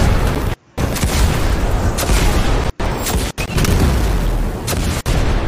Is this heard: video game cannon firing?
yes